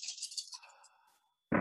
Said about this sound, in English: So I'm just going to grab all these here dice.